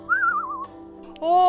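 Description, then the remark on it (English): A person vocally imitates a raven call: a wavering, whistle-like note lasting about half a second, a short lull, then a loud, buzzy, nasal squawk that starts abruptly and holds. “And then on your other shoulder lands like a raven.”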